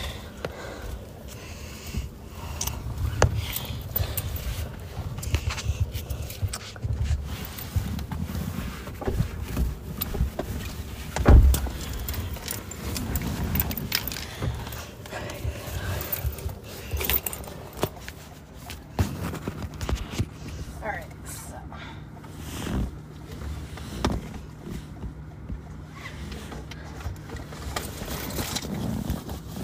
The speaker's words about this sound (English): Yeah, so I'm in the car right now. I'm just getting my stuff, the bags.